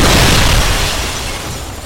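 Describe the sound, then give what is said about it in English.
A loud explosion set off by a lit fuse bursts out, a deep, full boom that rumbles and slowly fades over a couple of seconds as it blasts through a bar's big picture window, with no voices around it. “My well-timed explosion sent the creature pinwheeling through the bar's big picture window.”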